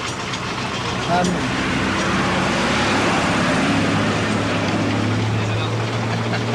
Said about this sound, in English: One of the other buses goes past waving. Bus from a rival company laughing his head off and waving.